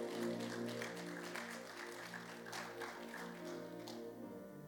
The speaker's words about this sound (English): Somebody give the Lord a mighty clap offering in the house.